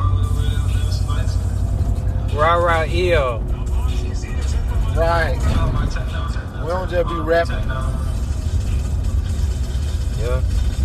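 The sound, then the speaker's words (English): A heavy truck with a big engine growls with a deep, steady exhaust-pipe rumble throughout, loud, while the people riding in it talk over it in bursts. “You literally hear the car in the track and we in the truck with the big engine.”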